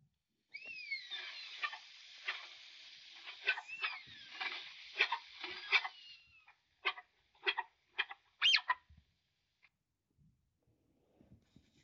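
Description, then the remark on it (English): High, thin squealing whistles from a tapir, a sustained warbling squeal for several seconds followed by a series of short, sharp chirps, loud with no voices. “Animal of the week. Tapir.”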